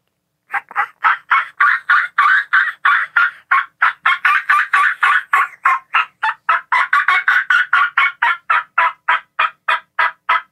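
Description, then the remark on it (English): A long, steady run of loud turkey yelps, imitated on a call as used in fall hunting to regroup a broken-up flock, repeating rapidly and evenly for about ten seconds, with no talking. “Like, you're hunting in the fall, you bust up a group of turkeys, show me a sound that would be like a sound that would be effective.”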